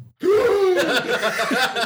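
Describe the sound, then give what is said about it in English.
A single dramatic, drawn-out gasp performed by a voice, breathy and loud, sliding in pitch before trailing off into a few shaky breaths. “He hears Leovold, and he looks at you, gasp.”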